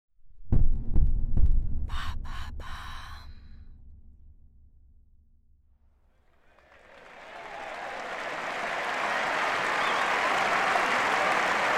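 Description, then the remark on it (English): Deep, booming thuds and a low rumble fade to near quiet, then a large tennis crowd's roar and cheering swells up and holds steady, loud and dense, with no one speaking, in the stands of the Philippe Chatrier Central Court on June 8, 2002. “The crowd roars in excitement in the stands of the Philippe Chatrier Central Court.”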